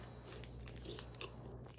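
Crisp crunching as someone bites and chews a Mr. Big chocolate bar, made in Canada, chocolate with a crunchy centre; repeated sharp crackly bites over a low steady hum and no talking.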